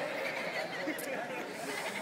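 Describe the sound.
A large audience at a service imitating sheep, each turning to a neighbor and bleating at once in a dense, overlapping chorus mixed with scattered laughter and chatter, steady throughout.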